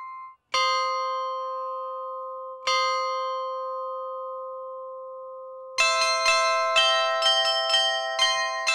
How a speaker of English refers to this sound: The European clockmakers of the 16th century needed great mechanical expertise in their trade. With many fitting chiming mechanisms to their clocks to ring out the hours.